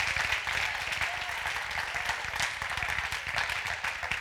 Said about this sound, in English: Don't stop clapping. Would you give God a clap of praise? Amen. Come on, give God a praise.